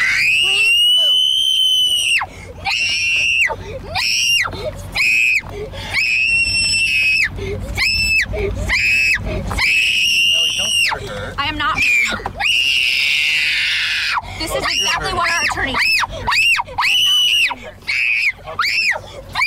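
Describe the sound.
A child screams loudly and shrilly in long, repeated bursts, close by, with short gaps and some voices in between, nearly continuous for the whole stretch.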